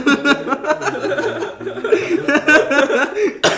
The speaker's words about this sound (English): As he's coughing.